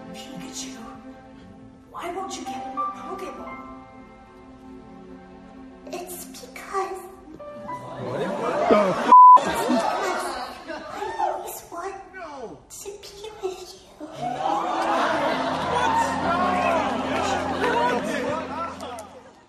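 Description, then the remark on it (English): A movie theater crowd erupts in loud, excited cheering and shrieking, swelling in bursts and then holding a sustained roar, after a few seconds of quieter tonal music. “Is that the crowd Yes, freaking losing their it collective minds?”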